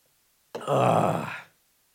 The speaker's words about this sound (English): The growl? That didn't sound good?